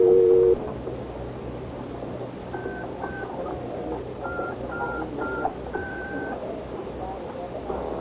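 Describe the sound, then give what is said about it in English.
A quick series of touch-tone beeps as a phone number is dialed on a pay phone in a phone booth after a dime is dropped in, each tone short and distinct over a steady low background hum, following a brief louder dial tone at the start. “I want to get the number I dialed.”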